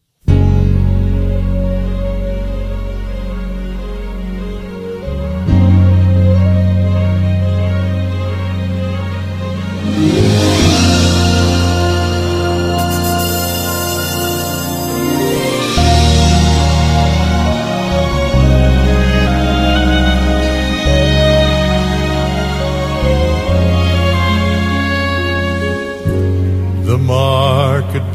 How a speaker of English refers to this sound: we're going to sing a song. We're not going to sing it, but it's a beautiful song.